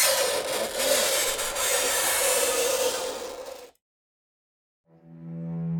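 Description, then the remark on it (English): Fingernails screech and scrape across a small hand-held chalkboard as a halfling rakes his fingers across it to get everyone's attention, a harsh, grating rasp for several seconds, then a pause before a sustained, whining squeal rises at the end. “It's getting louder and louder and more worked up, and then you hear the screeching of nails on a chalkboard.”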